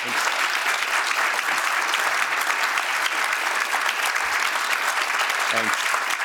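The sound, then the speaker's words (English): An audience at a candidate event applauds Governor Ron DeSantis steadily for several seconds, dense clapping forming a loud, even wash of noise with a few faint voice fragments beneath it. “Nice round of applause for you.”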